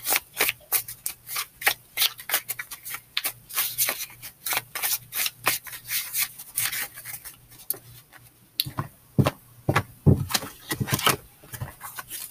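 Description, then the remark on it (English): Cards being shuffled, a steady stream of crisp papery snaps and flicks that come in quick bursts with short pauses, with no talking over them. “I'm shuffling the cards right now to see what comes.”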